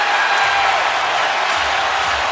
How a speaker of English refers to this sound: So the crowd is louder after JR makes the three than it is when Mike Breen says that it's bedlam here in Cleveland, when it doesn't actually sound, as a home viewer, that it really is